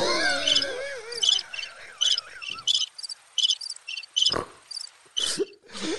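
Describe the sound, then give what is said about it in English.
A crickets chirping sound effect: crickets chirp in steady, evenly spaced pulsed bursts that repeat throughout, with a few wavering tones at the start and a couple of brief noisy thumps near the end. “And that's how I felt the day my grandfather died. Crickets.”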